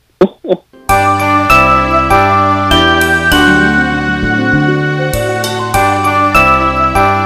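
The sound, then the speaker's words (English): After a couple of brief voice sounds, a loud recording of the Christmas song Jingle Bells, picked out by a producer, kicks in and plays steadily, a bright, dense arrangement with chiming, bell-like tones throughout. “Our producer picks out the worst edition of the song ever.”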